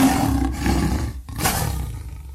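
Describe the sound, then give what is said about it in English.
A lion roars loudly, a deep, rumbling bellow that breaks off briefly and then surges again before fading into a low growl. “I want you to embrace everything that you encounter in your jungle, because I want you to become that lion in the jungle who roars.”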